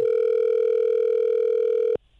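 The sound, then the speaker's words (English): A telephone busy signal on a call to Kingston, Jamaica: one steady, mid-pitched electronic tone held evenly for about two seconds, then cutting off abruptly into near silence. No one speaks. “Okay, well, at least I mean, it's busy, right?”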